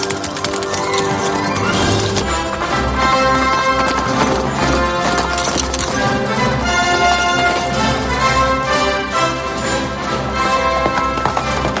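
Horse hooves clip-clop in a steady, quick rhythm, mixed under loud, full orchestral music that plays throughout. No one speaks.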